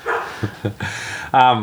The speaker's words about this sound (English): That dog is giving me the shits. Yeah, it's fine. It adds character.